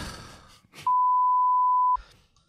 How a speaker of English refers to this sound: Would you just say, oh my God. Yeah, that's going to get beeped out.